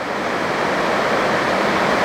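Heavy rain pours down in a dense, steady hiss that stays loud and even throughout, with no voices and no breaks in the roar.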